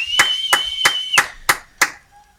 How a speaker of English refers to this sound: And right now in New York City, everybody's clapping because it's 7 o'clock. Let's listen up.